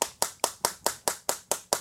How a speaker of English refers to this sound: I need to be taken through the science of packing a chew